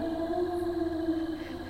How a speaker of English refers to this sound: Not that I doubt your hunting skills, but are you sure the werewolf is in this park? It was at that moment that I heard a long, loud howl that filled the air.